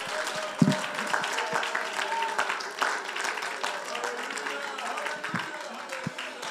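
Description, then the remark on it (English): An audience at a church service claps their hands to the Lord together steadily for several seconds, a dense, sustained patter of many hands, with murmuring voices mixed underneath. “Oh, let's clap our hands to the Lord together today.”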